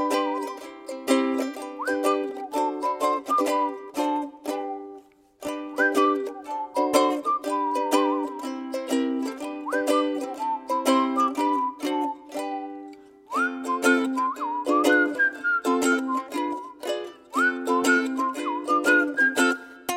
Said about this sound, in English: And so you have whistler and ukulele. It's just such an awesome sound, very silly, very fun. But the melodies that he composes that he's whistling are so beautiful, and I love them.